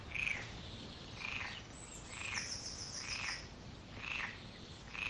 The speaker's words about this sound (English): Now, there is some bird calls as well. Don't be distracted by that. We don't care about birds here.